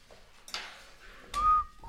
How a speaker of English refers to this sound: Shouldn't have whistled. I don't know why. Straight into a mic, dude.